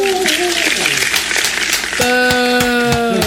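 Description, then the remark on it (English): Audience applause for the contestants of a game, a dense steady crackle of many hands clapping for about three seconds, with sustained musical tones ringing over it and shifting to a new chord partway through. “Let's give a round of applause for our contestants.”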